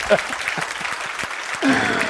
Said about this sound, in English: Clap your hands, say amen, do something. Will you do that?